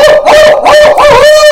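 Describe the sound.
A person imitates an owl call with their own voice, without a call in the mouth, a loud, sustained hooting that wavers through several quick pulses at a steady, fairly high pitch, with no other talking.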